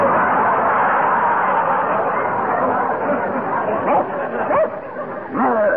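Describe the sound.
A hypnotized man's voice imitates a big, brown Airedale dog, yapping and barking in a rapid, continuous stream of rough, excited yelps, loud, with sharper rising barks toward the end.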